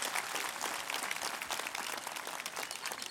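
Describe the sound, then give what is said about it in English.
A church audience applauds steadily in thanks to people for their work, a dense wash of many hands clapping at once without a clear beat, sustained at an even loudness for the whole stretch with no voices over it. “Give them another huge round of applause, my friends.”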